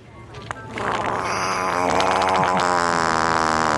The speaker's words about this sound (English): Yeah, first of all, it sounds like he shit his pants at every one of them. He's got a little handheld fart thing. Yeah, he has to. See, his hands are in his pockets most of the time.